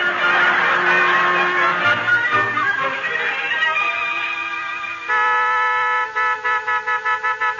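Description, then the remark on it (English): A car horn, sounded by Bill outside, who is waiting to drive someone to the train station, blares in long, sustained blasts, then settles into a steady held honk before breaking into a quick run of about seven short, rhythmic toots. No one speaks. “Hey, Tacy, go out and tell Bill to lay off that horn, will you?”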